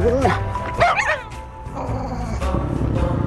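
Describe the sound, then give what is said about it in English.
Small wiener dogs walking by let out a couple of quick, high-pitched yips and whines with a low growl rumbling underneath, loud, over a busy background, growling at another dog. “The wiener dogs are growling at him.”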